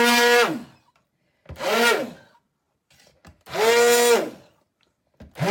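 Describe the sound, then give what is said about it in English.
An immersion blender purees scorching hot soup until smooth, whirring in loud, repeated bursts, its motor pitch rising and falling with each pulse, separated by short pauses of near silence and faint clatter. “And I actually, with my gadget here, my immersion blender, I can actually feel that it's getting smoother.”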